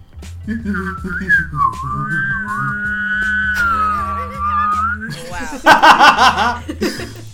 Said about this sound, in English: I know how to whistle and hum at the same time.